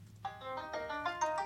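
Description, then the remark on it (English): A short, bright electronic melody of several quick chiming notes, the Singular mobile carrier's logo jingle as played in its commercial when the logo shows, sounding clearly on its own for about a second and a half. “It's like what it plays sound? Like at the commercial when it shows the logo.”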